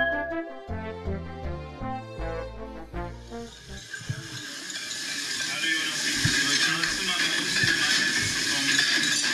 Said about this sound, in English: Well, the sounds of sherry being poured lets us know it's time to head back to the Christmas kitchen for Mrs. Claus's tasty treats for your holiday fun times.